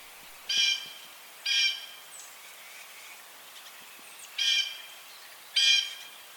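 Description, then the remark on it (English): Four harsh, raspy blue jay jeer calls come in two pairs with a quiet gap between them. Each call is a loud, grating, high-pitched screech, and no one is talking. “So the thing almost everyone knows about Blue Jays is they're like, everyone talks about like their annoying call, like often this will wake people up in the morning as they kind of do that jeer, jeer, jeer call.”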